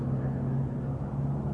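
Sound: car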